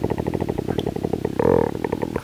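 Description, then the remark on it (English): A low stomach rumble gurgles in rapid pulses for about two seconds, briefly swelling into a louder, drawn-out groaning tone before resuming its bubbly stutter. No one speaks. “I'm trying to get my stomach rumble. My stomach rumble.”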